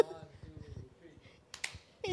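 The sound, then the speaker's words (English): Voices murmur, then a short burst of sharp hand claps breaks out, followed by another quick flurry of clapping at the end, as several people clap together briefly at a birthday celebration after the birthday song is sung and the candle is blown out. “Post pandemic, now we only clap,”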